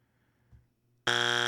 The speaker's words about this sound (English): We need a buzzer check.